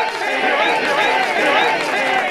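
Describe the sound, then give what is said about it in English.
A studio audience in the Owl's Nest cheering at a mention of the 80s: a dense, loud roar of many voices and whoops that holds steady for the whole couple of seconds, with no single speaker standing out. “Very loyal, being here in the Owl's Nest, cheering whenever I mention the 80s.”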